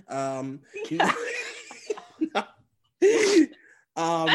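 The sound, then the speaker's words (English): Laughter breaks into sputtering, choked breaths, then a sharp, raspy gasp after a brief silence as someone laughing swallows a cough drop, followed by a strained vocal sound as they recover. “sorry, I just like literally had a cough drop in my mouth and then laughing made me swallow it down.”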